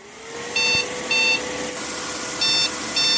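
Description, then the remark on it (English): A computer's motherboard BIOS POST failure beep code, with the monitor blank: four short, shrill electronic beeps in two evenly spaced pairs with a pause between, sounding over a steady background hum. “And instead of that reassuring single beep, you hear something like this.”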